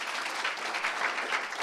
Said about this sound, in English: Give a clap of hands to the Lord.